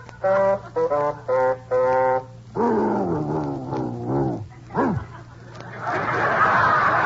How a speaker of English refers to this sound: Well, Baldy, you can sing. You're a singing dog.